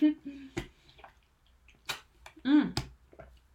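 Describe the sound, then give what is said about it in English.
Someone drinks from a Morton water bottle: a few sharp plastic clicks from the lid, with short slurping and swallowing sounds and a soft hum in between. “Oh, I've got one just here. I was just thinking I needed a drink.”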